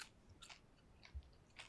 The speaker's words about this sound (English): I need to take four bites so I don't completely die on air. Okay, hold on. Obviously, we'll cut the crunching, the chewing. It's awful.